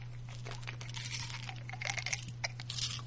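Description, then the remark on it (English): A pill bottle sound effect rattles in quick, busy clattering bursts, followed by a brief slurp of water. Fairly loud over a low steady hum, with no talking. “They really overemphasized the pill bottle sound effect there. And then the slurping.”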